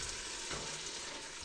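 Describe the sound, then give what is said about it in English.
Canned fire-roasted tomatoes with garlic are poured into a hot pot of Italian soup, a steady sizzle and wet spattering hiss, a brief surge of bubbling in the middle, with no one talking. “So we're going to take those fire roasted tomatoes with garlic and put that in there.”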